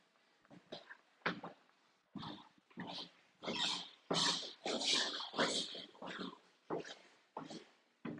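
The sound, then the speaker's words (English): A 100-year-old wooden staircase creaks and groans over and over, a dozen or so rough, grinding squeaks in an uneven rhythm, some short and some drawn out, fairly loud with no voices. “It's the sound of a 100-year-old staircase.”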